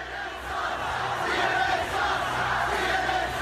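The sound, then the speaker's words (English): A large crowd shouting and jeering at a CNN news crew in a dense, sustained roar, many voices overlapping at steady loudness with no single speaker standing out, the hostile chanting swelling slightly midway. “This is just a small clip of the crowd coming after CNN.”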